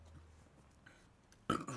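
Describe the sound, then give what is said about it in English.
A loud, close burp erupts near the end after a quiet stretch, a short guttural belch with a rough, throaty texture that briefly tails off and resumes. “sorry for the burp podcast.”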